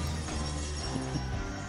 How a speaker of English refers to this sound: All right, it broke your overhead chandelier. Well, the screen shattered when that noise happened.